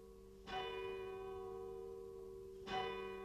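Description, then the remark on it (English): In light rain, the bell in the square, sturdy tower of St. Mary's, sounding through the town since 1628, rings for a watch night service in two strong strokes about two seconds apart, each leaving a long, steady humming resonance between them. No voices are heard. “And from the square and sturdy tower of St. Mary's, the bell that's been sounding through the town since 1628 is ringing for the watch night service.”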